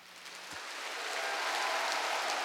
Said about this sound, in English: And I wanted to pick an applause sample that was more kind of raucous and excited and kind of celebratory than, you know, versus the one at the beginning of the song is more just like, oh, they're here, the show's about to begin.